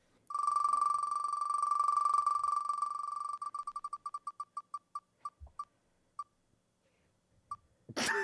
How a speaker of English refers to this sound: I've sent you a link to a wheel. Yeah. You're going to spin that wheel. Please do hold your phone up to the mic because it's got some great wheel sounds.